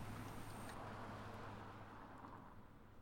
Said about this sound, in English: Coming to you live from Del Paso Boulevard, in a car, right now.